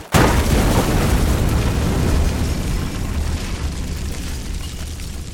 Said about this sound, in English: The explosion from the bomb set by Raven and Sarek ripped through the bodies of the two unsuspecting men